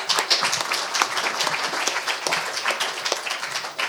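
A crowd applauds steadily, a dense wash of many hands clapping that holds a fairly even loudness throughout, with no talking over it.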